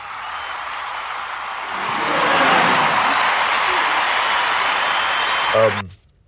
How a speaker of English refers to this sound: Anyway, thank you all for listening. Why are you applauding?